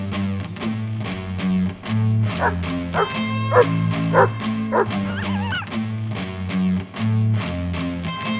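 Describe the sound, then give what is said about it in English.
Repeated sharp barks and high, wavering yips from a coyote as it approaches, loud, sounding over a steady, rhythmic musical backing with deep sustained tones. “Coyote coming in.”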